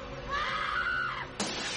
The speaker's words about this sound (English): And then a mannequin smashes through the window.